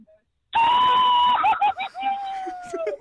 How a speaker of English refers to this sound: Come on, give us another cheer-hoo.